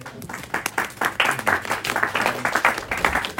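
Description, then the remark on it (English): An audience at a meeting applauds steadily, a dense patter of many hands clapping at once with no voices, holding an even, moderately loud level for a few seconds. “I take it that applause was for you rather than for me.”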